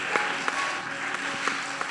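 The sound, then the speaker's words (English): An audience claps hands together in praise of God, a dense, steady wash of applause, with a few sharper individual claps popping out above the sustained crackle. “Clap your hands and add a shout of praise unto God.”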